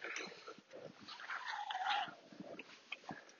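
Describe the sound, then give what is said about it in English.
A dog coming up from behind in a field makes soft whimpering and snuffling noises with a few short yips, plus a brief higher whine partway through, over quiet outdoor background with no one speaking. “Oh, we have a doggy coming up behind us.”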